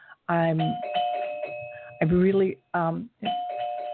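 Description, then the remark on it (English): A delivery man rings the doorbell at the front door, its steady electronic chime tones sounding in two long stretches while a person talks over it in short bursts. “So if you hear that door, it's a delivery man.”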